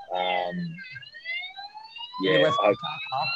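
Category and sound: vehicle, ambulance siren passing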